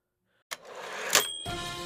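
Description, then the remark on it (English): Newspapers rustle and crinkle in a dry, noisy burst as they are shuffled, beginning after a short silence, swelling to a sharp crackle midway, then continuing as a steadier shuffling. No one speaks. “Shuffling my newspapers.”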